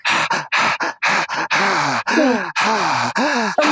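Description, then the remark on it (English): A rapid series of loud breaths as people take a deep breath in together, about eight heavy gasps and exhales in quick succession, some carrying a voiced, groaning tone. No one speaks. “So everyone, take a deep breath in and listen to this little summoning.”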